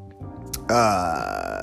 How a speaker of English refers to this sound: Sorry. Burping